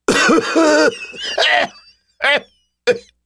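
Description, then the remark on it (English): Loud, harsh coughing: a rough, racking burst of several hacking coughs, followed after short pauses by two more separate, strained coughs with a raspy, wheezing edge. “He coughed so loudly that I thought he may retch out a lung.”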